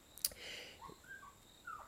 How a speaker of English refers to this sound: Sorry, it's tropical birds.